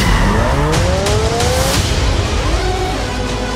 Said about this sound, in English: And then there's a section where a kind of you get a motorbike kind of working as a rise when the final cue kind of ramps up.